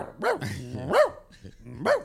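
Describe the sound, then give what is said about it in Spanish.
A person mimics a dog barking, playing a cat that was taught to bark, letting out three loud woofs with uneven pauses between them and some low vocal rumbling in the gaps. “Bueno, si le enseñaste al gato a ladrar.”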